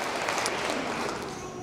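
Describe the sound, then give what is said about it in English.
Steady applause from a group of people, a dense, continuous patter of many hands clapping at even loudness for a couple of seconds. “Yeah, clap for them.”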